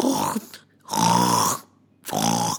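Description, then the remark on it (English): Loud snoring imitated by a voice to portray sleeping guards: three rasping, drawn-out snores with short pauses between them. “The guards started snoring loudly.”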